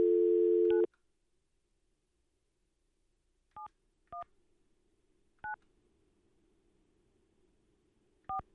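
A dial tone cuts off, then four short touch-tone beeps sound at uneven intervals as a phone number is keyed in, with a faint low hum underneath and no talking.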